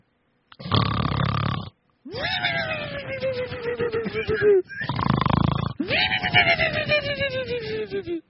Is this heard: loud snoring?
yes